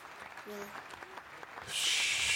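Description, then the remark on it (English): Applause for the winner of a foot race: scattered claps and a brief faint murmur give way to a sudden swell of dense, hissy applause that fills the final second at a steady, loud level. “They're still applauding me.”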